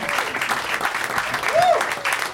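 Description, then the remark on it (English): A crowd claps steadily in a dense, continuous wash of applause as guests Chloe Dykstra, Tony Hinchcliffe, Steve Agee and Justin Roiland slowly enter through a curtain, with a brief whistle-like tone rising and falling partway through. “You're really making the audience clap a lot with your slow entrance.”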